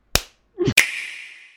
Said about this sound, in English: Next section, clap please.